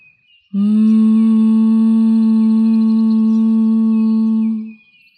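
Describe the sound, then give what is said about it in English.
A single steady, closed-mouth hum like a buzzing bee, made on an exhale during a breathing exercise, held at one low pitch for about four seconds with rich overtones, then fading out. No talking. “Now take a deep breath in through your nose and exhale, humming with your mouth closed like a bee.”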